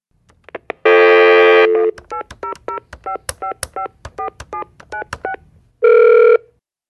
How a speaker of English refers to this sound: Let me see if I can get him on the phone now.